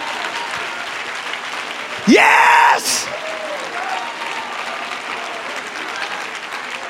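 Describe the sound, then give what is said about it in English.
Sustained applause from a large group clapping hands during a preacher's sermon, a dense steady patter throughout, with a loud voice shouting out exuberantly partway through. “Oh, let's clap our hands some more.”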